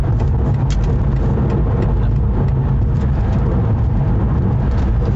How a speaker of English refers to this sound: We're on the highway, getting passed by a truck. Getting passed by a loud orange truck. Well, I guess, well, you know what I mean. Part of the truck is orange.